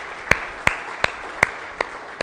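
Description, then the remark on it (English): Applause in a church for first responders (police, firefighters, paramedics), in the form of six slow, evenly spaced hand claps, sharp and moderately loud, over a steady background hiss with no talking. “But to our first responders, the police, firefighters, paramedic, let's give them a round of applause too, because they deserve it.”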